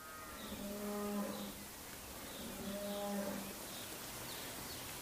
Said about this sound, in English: lowing of the Hereford, it had to be Hereford cattle, is a little misleading, because what I'm actually looking at is a yard full of llamas